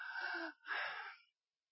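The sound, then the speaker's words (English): A voice imitates two quick, shallow gasping breaths in succession, fairly loud, each a breathy rush of air with a short pause between them. “Breathing would get a little shallow, much like this guy over here.”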